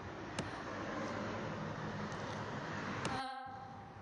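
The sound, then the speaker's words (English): Steady, continuous roar of road traffic outside, a broad rushing wash that never lets up, punctuated by a couple of sharp clicks and a brief tonal hum near the end. “Looking forward to the end of traffic as I'm trying to record.”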